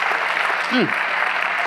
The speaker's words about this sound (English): Why don't you clap your hands right there and give God a mighty hand of praise.